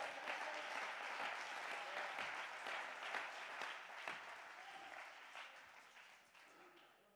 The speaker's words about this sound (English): This is what, come on somebody, clap your hand and give God the praise.